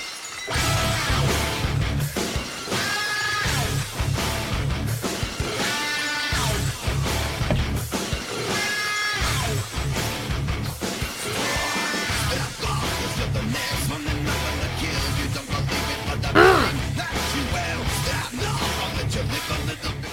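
A loud, dense heavy rock track in an old-school nu metal style, with distorted guitars, pounding low end and harsh yelled vocals running continuously throughout.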